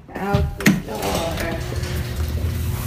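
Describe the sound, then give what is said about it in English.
A sharp mechanical clunk, then a steady low motor hum and rumble of a garage door being opened as people head out on a road trip, continuing throughout, with faint voices early on. “just opened the garage door because she's a champ.”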